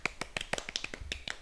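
A quick, uneven run of about ten sharp one-handed claps, each a bright, snappy crack like a finger snap, moderately loud with no talking over them.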